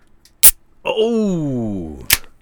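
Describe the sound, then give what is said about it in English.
A sharp hiss-pop of an aluminum beer can cracking open, followed by a long falling vocal tone, then a second crisp burst of the same kind. “That sounds like a beer.”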